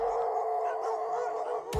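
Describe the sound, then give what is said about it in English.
Dogs howl together in a steady, sustained chorus, fairly loud, ending with a sudden sharp bark-like burst. No one speaks. “The dogs sniffed furiously, taking in every last fiber. Then they were off.”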